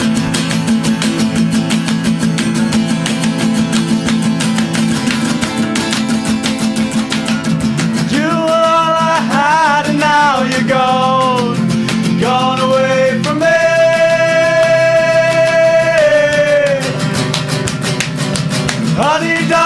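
Live band music plays loudly and continuously, a dense full-band sound with drums and guitars, and a bright melodic vocal line rising and bending over it about halfway through.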